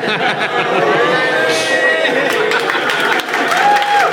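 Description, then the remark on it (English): Steady, loud audience applause fills the whole stretch, a dense wash of clapping mixed with crowd voices and a few whoops rising above it. “We got an applause break.”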